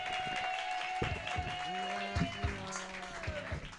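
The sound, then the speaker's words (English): Audience applause at a comedy show, as one comedian's set ends and the next comedian is introduced, keeps up a steady, dense patter of clapping throughout, while a man's voice talks over it through the middle. “Keep that applause going for your next comedian.”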